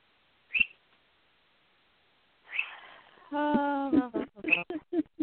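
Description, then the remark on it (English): A parrot chirps and whistles: a sharp chirp, a breathy squawk, then a sustained harmonic whistle followed by a rapid string of short clipped chirps. “Everybody's heard you chirping.”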